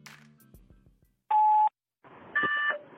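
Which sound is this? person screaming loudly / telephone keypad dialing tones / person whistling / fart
telephone keypad dialing tones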